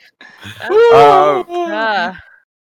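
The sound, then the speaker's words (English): A loud, drawn-out voiced yawn lasting about two seconds, its pitch rising then sagging, with a brief catch partway through before a groaning tail. “I throw a yawn.”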